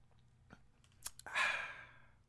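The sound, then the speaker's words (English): Mouth sounds: a few small wet clicks, then someone slurps a quick sip of a drink that trails off into a soft breathy exhale, with no talking. “And before I get up out of here, y'all already know the boy get thirsty, so I gotta go ahead and take me a partake in a little sip.”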